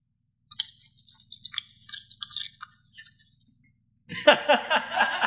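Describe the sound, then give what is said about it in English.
A dog named Lola munches noisily on popcorn, with irregular crunches. After a brief pause they return louder and faster, a dense burst of chewing. “Lola munching on the popcorn.”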